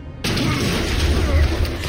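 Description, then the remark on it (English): A sudden heavy smash and thump lands, then a dense, rumbling wash of noise carries on for over a second before easing off. “There's a smash and a thump, followed by a gurgle.”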